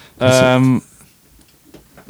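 A door swings open with one loud, drawn-out creak lasting about half a second, followed by quiet with a few faint clicks and rustles.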